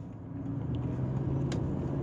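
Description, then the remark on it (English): A school bus, driven erratically with swerving and speeding, rumbles steadily along the road, its low engine drone filling the background with a continuous, moderately loud roar and faint higher hiss. “Glad my kid doesn't ride on that bus.”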